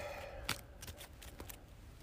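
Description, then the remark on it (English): A deck of cards being shuffled during a card game: a quiet run of crisp, papery flicks and snaps at an uneven rhythm, with no one talking. “Shuffle this real quick.”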